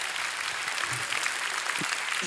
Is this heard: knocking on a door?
no